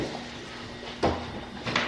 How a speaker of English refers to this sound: Just gonna open a door here real quick.